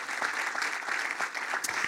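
A crowd claps hands together in a steady, dense wash of overlapping claps, bright and fairly loud throughout, with no clear voices on top.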